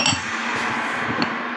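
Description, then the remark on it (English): A few light clinks of glass, like a drinking glass being lifted and set down, spaced unevenly over a steady low background hum, fairly soft. “It's a down the glass moment.”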